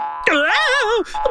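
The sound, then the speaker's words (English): A loud, springy cartoon boing of bouncy shoes, with a wobbling, warbling pitch that rises and dips over about a second, followed by a short second bounce. “Of course the springiness in the bouncy shoes is good.”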